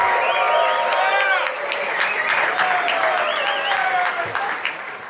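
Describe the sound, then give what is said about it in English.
Loud, steady applause from a large audience welcoming speaker Ty Lopez fills the whole stretch, with scattered whoops and cheering voices rising above the dense clapping. “So there's not a whole lot else I can say other than let's put your hands together for the next 20 minutes.”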